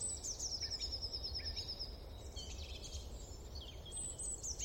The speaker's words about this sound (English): And it might actually be easier to pause, to notice that and bring our awareness to it, and to allow a bit more space to hear the birdsong and appreciate our natural surroundings than we first think.